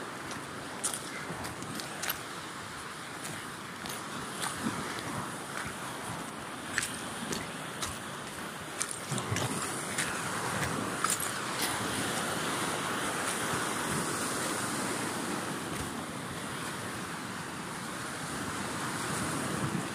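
Steady rush of ocean surf washing ashore in Curaçao, a broad continuous roar that swells slightly midway, with some wind buffeting the microphone and no one speaking.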